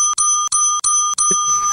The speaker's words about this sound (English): Normally, we would have done this, but I think we'll go with the bell on that one.